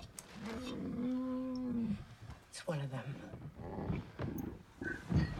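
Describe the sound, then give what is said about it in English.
A triceratops dinosaur roar: one deep, drawn-out bellow with a lowing, cow-like tone, loud, followed by people talking over quieter grunting sounds. “Oh, that's Triceratops.”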